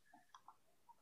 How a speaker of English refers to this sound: please stop typing.